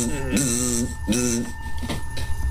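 A mirror lying face down on a bed next to a clock vibrates with a buzzy, tonal hum like a cell phone on vibrate, pulsing in three bursts roughly every 0.7 seconds over a steady low background.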